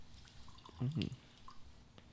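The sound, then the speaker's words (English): A short, soft pour of bourbon into a glass, a quick gurgling glug lasting a fraction of a second, against a quiet background. “I'm pouring a little heavy. It'll last us for the show.”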